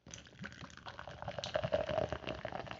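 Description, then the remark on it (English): Pomegranate kombucha pours into a glass, a steady gurgling stream with a rising pitch as the glass fills, with no voices over it. “as I pour my pomegranate kombucha.”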